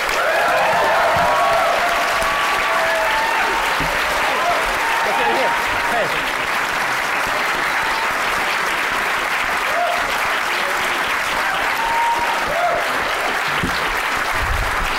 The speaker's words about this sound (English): Thanks, y'all. Oh, complicated. Now, if you're done clapping for me, I would like to point out we are sitting on tables which are about 3 foot away, and Elijah's taking a photograph because you guys are so good looking.